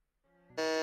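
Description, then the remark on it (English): A harsh, sustained electronic game show buzzer blares as a player buzzes in to answer a video game trivia question, starting as a quieter tone that suddenly jumps to a loud, rasping, harmonic-rich drone. No one speaks. “You got a buzz.”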